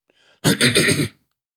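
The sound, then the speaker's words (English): A single loud, close-up cough with a harsh, raspy texture, lasting under a second after a soft intake of breath, then silence. No one speaks. “You just coughed in my ear.”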